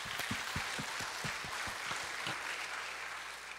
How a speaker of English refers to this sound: Once again, we give all the glory and honor to our God for what He has done during this past week of Vacation Bible School. Can we give God a clap offering?